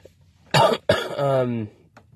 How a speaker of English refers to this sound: Sorry about this cough.